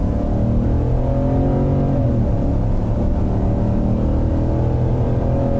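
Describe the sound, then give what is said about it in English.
A pickup truck engine accelerates while merging onto a freeway, up to about 70, revving loud with a rising, throaty growl. Steady engine roar fills the whole stretch, and no one speaks. “I'll bet you play that, 9 out of 10 people would not know that it's a truck.”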